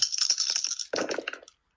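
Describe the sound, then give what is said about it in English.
Dice rattle and clatter out of a box across a hard surface in a quick burst of sharp plastic clicks, one die hopping out of the box, followed by a few scattered bounces that settle within a second and a half, fairly loud. “Okay, so one of my dice hopped out of my box.”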